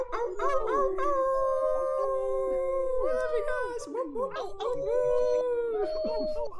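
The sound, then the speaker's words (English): Several people tuned in online unmute their microphones and howl together like wolves, overlapping long rising and falling wails in a loud, chaotic chorus that continues throughout with a low hum underneath. “So all the people who are tuned in tonight, make some wolf howls.”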